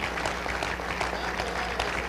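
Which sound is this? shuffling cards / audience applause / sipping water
audience applause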